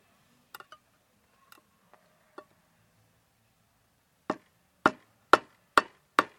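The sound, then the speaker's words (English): A few light metallic taps and clicks, then five loud, sharp hammer blows driving an old wood-handled knife into a tin can of beans to open it, in a steady rhythm, each with a bright ringing edge. “So I took the old wood-handled knife and my hammer. And that's what you're listening to.”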